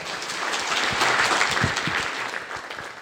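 A round of applause from a crowd, dense rapid clapping that stays steady and fairly loud for about three seconds before easing slightly at the end.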